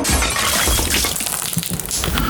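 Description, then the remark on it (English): A basin of water crashes onto the floor: a loud, dense burst of clattering and splashing that stays harsh and sustained for about two seconds, with no voices. “You swoop down and you catch the mirror before it falls, but that means the basin of water falls on the floor.”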